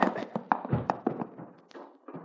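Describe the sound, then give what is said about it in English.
A rapid, irregular series of knocks on a wooden front door at the porch of a house, about a dozen sharp, hollow raps, gradually growing softer toward the end. “Not wanting to waste time, we walked up to the porch, knocked on the door, and pretty soon I was explaining our visit to Root Babson.”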